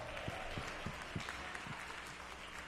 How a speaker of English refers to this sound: Let's give our kids a hand clap as they work. They go on out. Come on, let's give them a bigger hand than that.